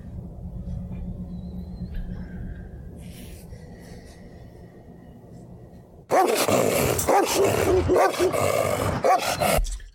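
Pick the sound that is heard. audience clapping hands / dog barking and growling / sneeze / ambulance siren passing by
dog barking and growling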